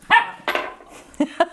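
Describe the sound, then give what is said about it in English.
A pet dog barks in four sharp bursts, two louder yaps followed by a pair of quicker, clipped ones, as the pets Tucker and Tony react; no talking underneath. “Little cat dog action. They have opinions about blueberries, too.”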